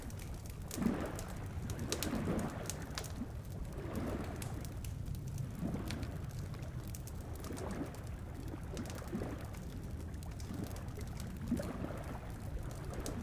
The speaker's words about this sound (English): It was dawn, and the early morning chorus of birds was in full force over the airwaves.